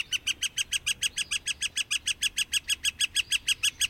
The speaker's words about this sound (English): Other species you might see at a ball field, northern flickers.